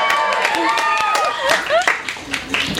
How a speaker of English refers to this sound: As for our author tonight, I'm sure many of you know, but Leigh Bardugo was born in Jerusalem. Yes, round of applause.